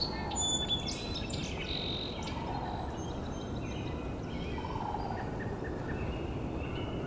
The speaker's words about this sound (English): There's a downy woodpecker.